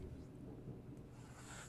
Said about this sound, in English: Could you guys hear that? Yeah. Is that thunder? That is.